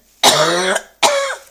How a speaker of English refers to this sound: And so I'm going to cough again.